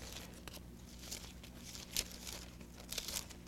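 Soft, quiet rustling and crinkling of thin Bible pages being turned to 2 Corinthians, with brief papery swishes and flicks scattered irregularly over a few seconds and no talking.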